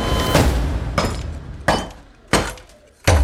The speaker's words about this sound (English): She's smashing something up with the lamp.